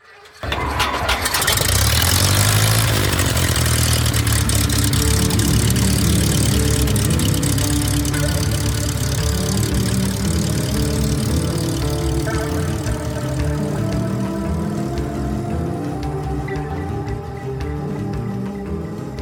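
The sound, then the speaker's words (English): A small propeller airplane engine cranks and catches, then settles into a loud, steady idle with a low rumbling drone and layered harmonic tones, no voices present. “Time to hop aboard my flying carpet, buckle your seatbelts, and prepare for takeoff on today's adventure. Snipe Hunt.”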